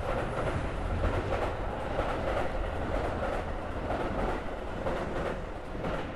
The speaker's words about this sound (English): Well, first of all, do you guys like the sound of a train going in the background? Because here it is.